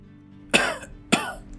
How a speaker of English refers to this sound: if you are being watched cough twice.